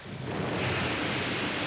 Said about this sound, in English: Thunderclouds rolled across the night sky above the beach, sending rain skittering across the ground, hammering against the windows of the professor's laboratory.